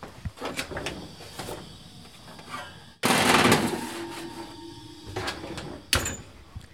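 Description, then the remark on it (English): A metal pan of oats and nuts coated in syrup and oil scrapes and clatters onto an oven rack, followed by the heavy thud of an oven door swinging shut, with a few lighter clanks afterward. No one speaks. “You're going to want to kind of shake it down to an even layer and then put it in the oven.”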